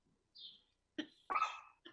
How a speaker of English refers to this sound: Whoever's got the dog, mute. I don't have the dog outside. There's a dog somewhere. I don't have it.